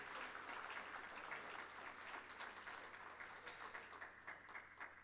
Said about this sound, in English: Praise the Lord for you ladies. I want to give you ladies a round of applause and say thank you.